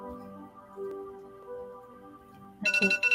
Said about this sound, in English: Sorry, alarm for US market because 9:30 yung open.